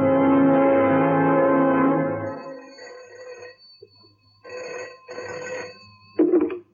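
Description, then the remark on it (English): A loud telephone bell rings for about two seconds, then gives way to a faint electronic line tone with muffled bursts, ending in a sharp clunk like a receiver being lifted. “The next morning, I made a phone call to Derek's parents.”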